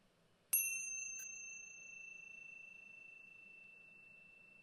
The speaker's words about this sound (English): We'll listen to the sound of the chime just to end this practice.